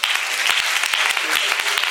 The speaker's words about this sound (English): And let's clap for such people.